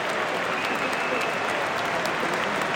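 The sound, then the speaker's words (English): A large stadium crowd at a Manchester United match cheers and applauds for number 21, Ander Herrera, in a steady, dense roar of claps and voices that holds at a constant loudness throughout, with no single voice standing out. “Well, you heard that cheer for Ander.”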